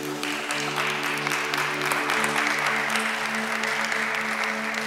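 audience applause

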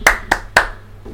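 hand clapping

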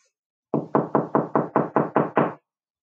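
knocking on a door

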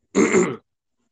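hiccups

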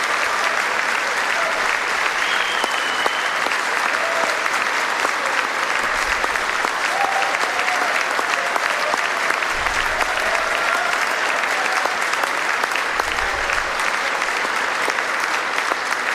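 audience applause

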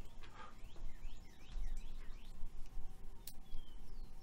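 birds chirping

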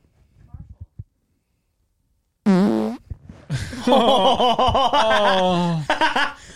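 fart into a microphone

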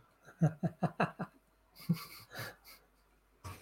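dog snoring

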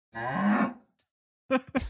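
cow mooing

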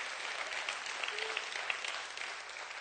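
audience clapping hands

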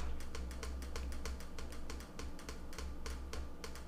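computer keyboard clicking

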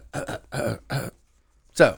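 throat clearing

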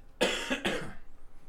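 cough

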